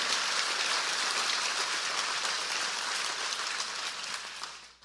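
audience hand clapping

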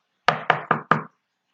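knocking on a door

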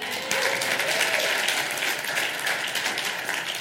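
audience applause and cheering

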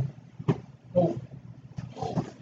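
big cat roar

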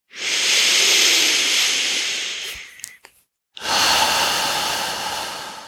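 deep lower belly breathing

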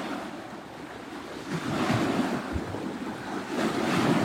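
water waves lapping

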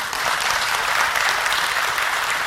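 audience applause

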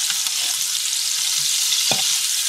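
food sizzling

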